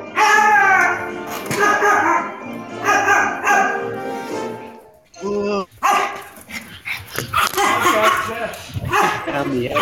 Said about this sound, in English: What's with the dog?